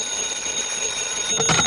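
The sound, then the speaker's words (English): Johnny Dollar's telephone rings in the radio drama Yours Truly, Johnny Dollar, with a steady, unbroken metallic jangle of high bell tones, holding at an even level and swelling a little louder at the very end, with no voices. “Your number is ringing, Mr. Dollar.”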